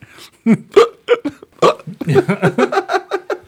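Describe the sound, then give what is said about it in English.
A voice mimics hiccups with a string of short, sharp vocal hics, loud, speeding into rapid rhythmic bursts toward the end. “No, but I'm telling you, I think that the hiccups would be fuck all that. Insanely annoying for everybody.”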